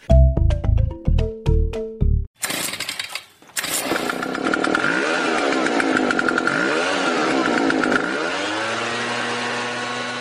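A short run of musical notes gives way to a leaf blower engine sputtering to life, then running loud with a steady whine that swells and dips in pitch.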